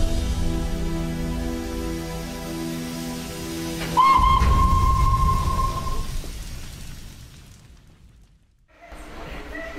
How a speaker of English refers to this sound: Before you is my famous A1 Pacific steam locomotive design, Flying Scotsman.